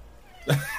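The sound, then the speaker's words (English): A cat meows once, a short, fairly loud cry that starts after a quiet stretch, followed by the start of another sound at the very end. “Are you some fucking fourth wall fucking cat?”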